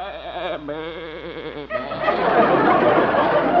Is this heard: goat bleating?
yes